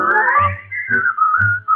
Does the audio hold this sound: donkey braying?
no